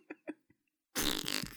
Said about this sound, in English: We can't get anything figured out because I can't hear you talking over the sound of everybody's farts.